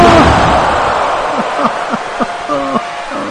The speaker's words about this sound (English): tossing it down upon the canvas and would call Kane up, watching him rise and toss him to the ropes, raising him up and slammed him with a, by God, pop-up powerbomb right upon the chair.